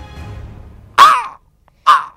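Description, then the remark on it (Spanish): Two loud, harsh raven croaks ring out, separated by a brief silence, following a low, murky background rumble that fades just before the first call. “Horrido cuervo, vetusto y amenazador, dime cuál es tu nombre en la ribera de la noche plutónica.”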